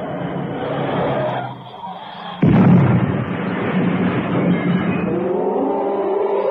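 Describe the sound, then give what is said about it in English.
A car engine drones, then a sudden loud crash as the car swerves into a rock face where the road narrows, followed by a sustained rumbling and grinding noise that carries on to the end. “Cannon's car had swerved into the rock face”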